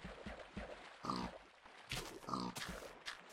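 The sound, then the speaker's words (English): Pigs grunt and oink in a rapid, overlapping jumble of short snorts and squeals, several animals sounding off at once with no talking. “He's getting lambasted. by these pigs.”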